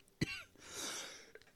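A sharp cough from smoking weed bursts out, followed by a long raspy, wheezy exhale and then a smaller second cough, with no talking.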